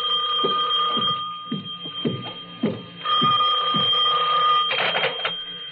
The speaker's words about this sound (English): My substitute secretary hadn't come in yet, but my phone was ringing.